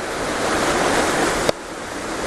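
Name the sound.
rushing waterfall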